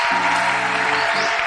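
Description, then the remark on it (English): A dense wash of audience applause for a choir, many hands clapping at once in a steady, loud roar, with faint tonal voices or cheering sustained underneath. “Clap for your choir.”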